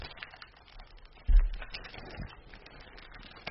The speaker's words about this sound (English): It's all taped up. You have your keys on you? I do. Can you open this, please?